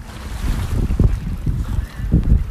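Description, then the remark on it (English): Waves slosh and splash against rocks on a beach, with several heavier surges breaking through a steady rumble of water and wind buffeting the microphone. “You're going to listen to ASMR beach waves splashing on rocks.”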